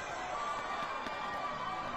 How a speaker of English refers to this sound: It's getting like roars of applause. I don't think they understand. They're all supposed to be quiet. He's asking them to be quiet, and they all cheer.